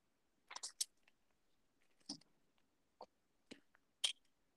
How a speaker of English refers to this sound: It was a water bottle.